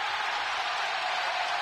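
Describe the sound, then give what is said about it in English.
A large arena crowd roars and cheers in a steady, loud wash of noise that holds without a break, with no clear individual voices standing out, responding to Draymond Green asking the crowd for cheers. “Draymond Green asks the crowd for cheers. They respond.”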